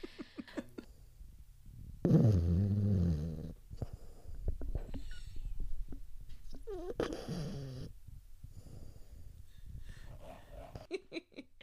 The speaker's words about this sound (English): My dog right now is snoring through this.